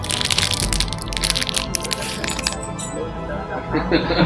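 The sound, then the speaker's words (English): Crinkling packaging and sharp plastic clicks and clatters as a brand-new pack of small dice is opened and the dice tumble together, fairly loud, with faint voices in the background. “Open up brand new dice.”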